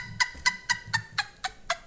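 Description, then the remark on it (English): A goose honks seven times in a quick, steady series, each call a short, nasal, fairly loud blast, with no one talking. “Geese for Trump.”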